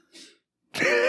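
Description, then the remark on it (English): A single sneeze: a short breathy intake, a brief pause, then a sudden loud, explosive burst that trails into a voiced, ringing tail. No talking is heard. “Bless you.”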